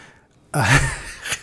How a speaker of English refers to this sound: starts snoring into the mic...